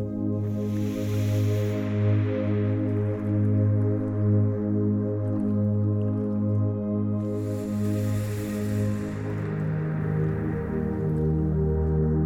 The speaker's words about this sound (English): Hear the gentle noises of the river as you sit here peacefully and quietly.